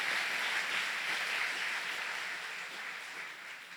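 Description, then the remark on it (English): A crowd claps steadily in sustained applause for Jesus, a dense wash of hand claps with no voices on top, easing slightly toward the end. “Give Jesus a big round of applause.”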